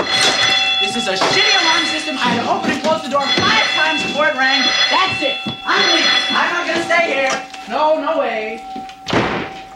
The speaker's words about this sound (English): entering the back of the store and setting off the alarm